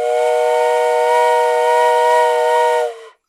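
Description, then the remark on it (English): A voice imitates a train whistle with one loud, sustained, reedy tone held for about three seconds. It swells slightly, then the pitch sags and cuts off, with no talking around it. “I think we might be heading that to that train the rolled in a shockingly crashing fashion.”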